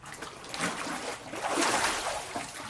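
Water splashes and sloshes steadily for a few seconds as a person is immersed during a water baptism, with a fuller surge of splashing in the middle before it settles into dripping and trickling. No one speaks.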